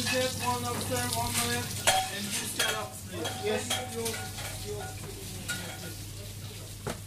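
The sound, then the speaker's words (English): Sweetbreads sizzle and crackle steadily in a frying pan as they brown for about four or five minutes before going in the oven, a continuous hiss with occasional scraping stirs and light clinks of utensils, over a low, constant hum. “I take about four or five minutes just to brown them off, and then in the oven maybe another 3 or 4 minutes.”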